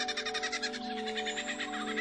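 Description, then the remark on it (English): A male songbird imitating more than 20 different bird species in one song: a rapid, steady run of bright, high pulsing notes over a sustained lower hum, moderately loud and continuous for the whole stretch, with no talking. “He can imitate more than 20 different bird species in one song.”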